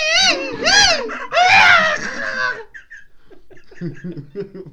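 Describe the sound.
A person imitates the scream of the Mogollon Monster in two loud, wavering, high-pitched bursts, rising and falling in pitch, followed by quieter laughter and murmured voices.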